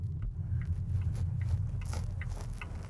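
A steady low rumble of a Volvo being driven in single pedal mode round a hill route, with faint tyre and road noise and small clicks and taps from inside the cabin, continuous and fairly quiet throughout.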